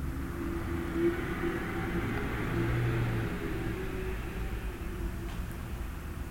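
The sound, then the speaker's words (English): Steady low rumble of traffic on the West Side Highway, a broad, noisy wash, continuous throughout without distinct passing vehicles, muffled as heard through the windows of a studio looking out over the highway and the Hudson River. No one speaks. “So you might hear a little bit of the traffic going on.”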